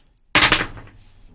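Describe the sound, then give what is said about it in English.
Spiel dice are rolled to pick a contest winner in one sudden, loud clattering burst. A brief rattle follows and fades out within about half a second, with no voices. “We got a lot of people in on it this year, so we'll get the old Spiel dice out and get them rolling.”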